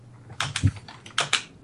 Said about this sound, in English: Who the heck is typing in the background? Oh, I am so sorry. That was me. I should have muted the mic.